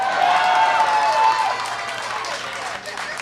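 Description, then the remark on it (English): An audience claps steadily, a dense wash of applause filling the whole clip, with a thin whistle-like tone in the first second and crowd murmur underneath. “I saw people who said boo now clapping.”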